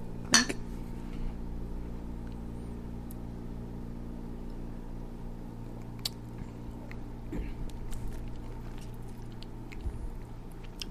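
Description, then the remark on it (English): Glasses of Belgian-style beer clink together in a toast: a sharp glassy clink rings out right at the start, followed by a few faint tinkles and light tapping over a steady low background hum. “Cheers. Cheers. Cheers. Clink.”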